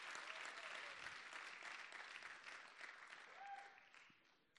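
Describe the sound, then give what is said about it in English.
A crowd applauds steadily, a dense wash of many hands clapping at once that holds for several seconds before tapering off, with a faint voice rising briefly through the noise. “I got 6 hand claps.”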